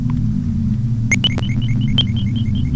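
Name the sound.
beeping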